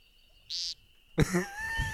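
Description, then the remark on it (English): A woodcock's frog-like grunting call, a buzzy, nasal rasp after a brief hiss, set against a thin, steady high-pitched insect drone. “You're like, what's grunting over there? I mean, it sounds like a little frog.”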